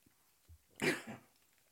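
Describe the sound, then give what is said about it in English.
A single sharp sneeze bursts out, loud and breathy with a hissing spray, after a soft intake of breath, then trails off into quiet. Nobody speaks. “Bless you.”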